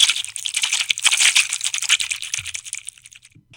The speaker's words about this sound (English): It's tillage time here in Western Kentucky, and this video comes to you from the Green River Flats, where a John Deere 9510R four-wheel drive tractor and Kuhn Krause 4850 Dominator are working on next year's seed bed.